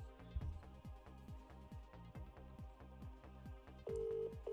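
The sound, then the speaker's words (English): A phone call ringing tone with a steady, rhythmic pulsing beat repeating throughout, ending in a sustained electronic tone; no one speaks. “It's ringing.”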